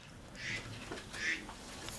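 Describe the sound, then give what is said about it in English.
A duck quacks twice, two short nasal calls about three-quarters of a second apart, moderately loud against a quiet, faintly hissy background with no one speaking. “I just have to take care of a duck.”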